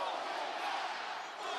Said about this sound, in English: And the crowd chanting, throw him out.